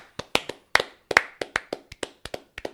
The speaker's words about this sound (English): Got to clap for him. You got to clap.